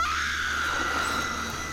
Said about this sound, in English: we get Mrs. Bowman screaming at the sight she's just beheld